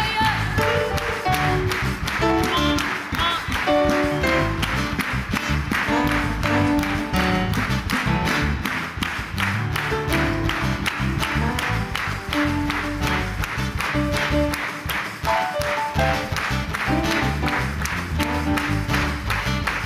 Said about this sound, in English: Put your hands together. Clapping is the language of authority.